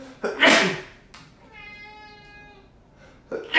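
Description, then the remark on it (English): A sharp, breathy sneeze bursts out, followed by a steady, high, tonal whine for about a second, then the start of another noisy burst at the end. “Bless me.”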